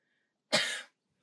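A single sharp cough bursts out abruptly and fades within about half a second, with quiet before and after and no talking.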